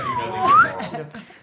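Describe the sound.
A quick human whistle that dips slightly and then glides upward, lasting about half a second, with murmuring voices and faint laughter underneath.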